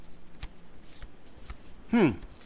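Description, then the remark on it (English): Soft papery rustling and light handling clicks as a dead man's pockets are searched and a paper train ticket is handled, ending in a slightly louder crinkle with a brief voice sound near the end. “Train ticket.”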